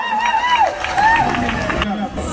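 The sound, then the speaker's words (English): A crowd cheers and claps, with a steady wash of applause under a few high, rising and falling whoops and shouts that stand out above the noise throughout. “Let's give a round of applause, y'all.”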